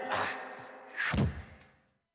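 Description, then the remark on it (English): A door slams shut with a heavy thud after a brief rattle of handling, and a short clunk of the lock follows before the sound fades out. “I've locked the door with a quizzical question.”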